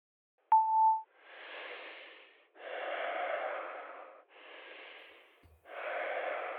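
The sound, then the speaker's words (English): A brief voicemail beep, then four long, muffled breathy bursts of rustling air, fairly loud with short gaps between them, like a phone breathing in someone's pocket, left as a message on a voicemail line. No one speaks. “All right, that sounds like a butt dial, maybe.”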